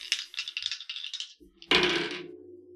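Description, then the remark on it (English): Giant dice rattle and tumble across a hard surface in a quick clattering burst, then a heavier one lands with a loud thud and rolls to a stop, rolled for a charisma test. “Use my giant dice.”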